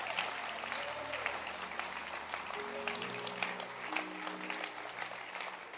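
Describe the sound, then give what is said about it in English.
An audience at a Good Friday church service claps steadily throughout, a dense, crackling wash of many hands, with low sustained organ-like tones underneath shifting midway. No one speaks. “But can you clap your hands for Good Friday church service at your local church online?”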